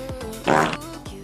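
A short, loud, buzzy fart sound effect blares once for about half a second, with a brief rasping burst standing out against a steady background hum and no talking.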